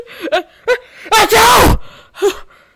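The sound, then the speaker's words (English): A person draws a few sharp, voiced gasps, then bursts into one loud, explosive sneeze lasting about half a second, caused by sneezing powder in a Tintin audio drama, followed by another catching breath as if a second sneeze is building. “Sneezing powder.”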